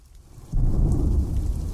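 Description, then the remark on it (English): Heavy rain with thunder: a steady low roar swells suddenly after a quiet start and stays loud and rumbling, with no voices present. “I was hoping the rain would let up soon, but its intensity kept up.”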